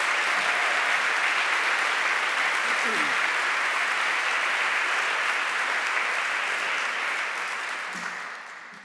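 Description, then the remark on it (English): Sustained applause from a sizable audience welcoming new students at HDS, steady and fairly loud for about seven seconds before tapering off at the end. No one speaks. “How about some applause for the new students who are coming to join us?”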